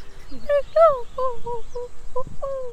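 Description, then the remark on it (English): A wood pigeon coos in a quick series of soft, throaty notes, repeated several times in a loose rhythm, clear against a quiet outdoor background. “So how do you know that's called a wood pigeon?”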